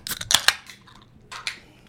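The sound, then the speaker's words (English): Beer cans or bottles are cracked open: a cluster of sharp metallic snaps with a short fizzy hiss, then a second pop and hiss a moment later, with no talking. “Open it. Let's open them.”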